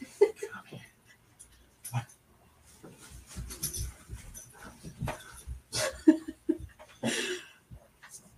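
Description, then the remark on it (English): A puppy pants and snuffles, with soft whimpers and rustling as it shuffles around, broken by scattered breathy bursts and bumps. “I'll do an episode on my puppy life at a different time, but that, well, here we are.”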